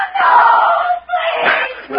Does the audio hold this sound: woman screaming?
yes